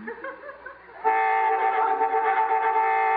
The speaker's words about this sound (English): Boy, I hate honking during smooching.